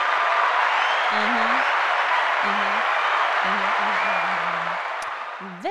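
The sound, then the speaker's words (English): A crowd applauds in a dense, steady wash of many hands clapping that holds loud throughout and eases slightly near the end, with faint voices murmuring underneath. “I feel like that should be a hand clap of praise.”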